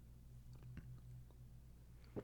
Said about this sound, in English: Testing how far away from the mic I can drink without it registering. It's definitely going to register because I slurped. That was a big gulp. Hang on.